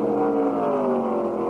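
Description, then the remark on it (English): Loud, sustained engine roar from a pack of about ten 3,800-pound stock cars drafting down the backstretch behind King Richard in a Grand National race, a dense, rumbling drone with a slight drop in pitch as they sweep by, no voices. “With 10 cars up front, everybody's getting the help of the draft, and they're content to follow King Richard around like an angry torrent of 3,800-pound cars down that backstretch.”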